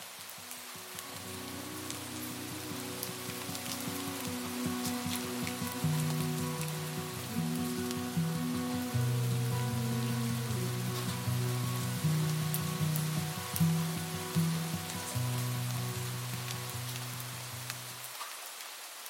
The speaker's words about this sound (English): You sit on the couch and listen to the rain hit the window.